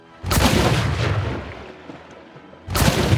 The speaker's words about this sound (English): Just another goopy explosion.